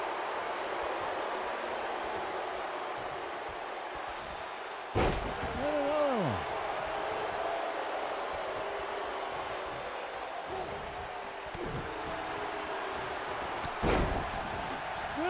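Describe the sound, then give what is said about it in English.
Two heavy, booming body slams onto a wrestling mat from a belly-to-belly suplex and a front wrench suplex, several seconds apart, land loud over a constant roar of a large crowd, with a cheer swelling after the first impact. “Belly to belly suplex. Front wrench suplex.”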